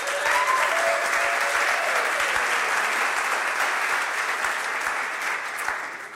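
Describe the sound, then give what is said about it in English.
An audience claps steadily, cheering for a panel, in a dense, continuous wash of applause, with a faint cheer or whoop rising briefly near the start. The clapping stays loud throughout and eases off slightly at the end. “So let's cheer for this beautiful panel.”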